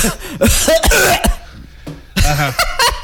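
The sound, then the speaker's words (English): Loud, close-up coughing right into the microphone: a quick cluster of harsh, rasping coughs, a brief pause, then another rough burst of coughing. “I can start coughing.”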